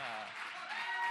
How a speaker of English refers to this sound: Yes, fired up crowd. Love it.